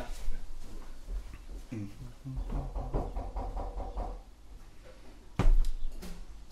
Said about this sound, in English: has gone to answer the door